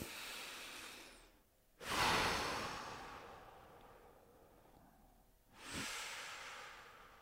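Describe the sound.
Slow, heavy breaths in a hotel room at night, three long airy inhales and exhales with a rasping, hissing texture and quiet pauses between them; no one speaks.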